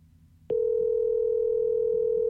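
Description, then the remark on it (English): A steady electronic phone ringback tone of an outgoing call starts abruptly after a brief low rumble and holds at an even, fairly loud level, heard through a phone line with no talking. “Usually picks it up and goes, Eric Zane.”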